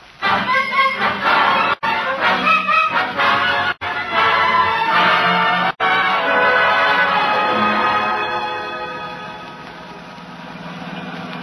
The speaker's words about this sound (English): Just listen to that motor purr.